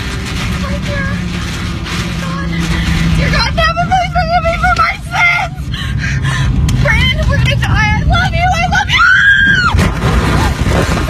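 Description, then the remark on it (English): A tornado slams into a car and flips it over, with a loud, continuous roaring rumble and rattling, while people scream and cry out frantically over it, the shrieks rising toward the end. “And that's where they go through the tornado and their car flips over.”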